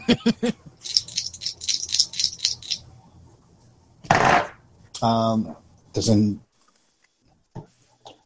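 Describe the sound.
Two heavy dice clatter and rattle in a quick burst of sharp clicks for a few seconds as they are rolled for an attack in a game, then people's voices speak briefly afterward.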